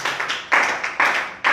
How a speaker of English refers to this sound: Can you clap your hands for this? Oh, what a beautiful, clap, everyone, clap your hands.